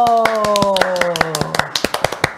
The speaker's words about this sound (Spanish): por favor, un aplauso. ¡Bravo!